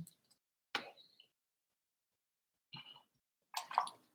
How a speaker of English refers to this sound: I'm going to take a little bit of a break and drink some water.